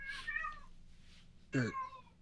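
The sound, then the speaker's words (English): A cat yowls twice outdoors: a drawn-out wavering cry, then after a short pause a louder, sharper wail that trails off, with no voices. “I don't know if that was a kid or a cat outside that died.”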